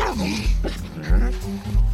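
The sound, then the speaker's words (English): A miniature pinscher, a small toy-breed dog, barks and growls in several rough bursts, with a low rumbling undertone between the yaps. “Usually weighing between 5 and 10 pounds, the miniature pinscher is classified as a toy dog.”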